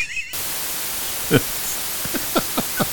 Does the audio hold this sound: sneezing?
no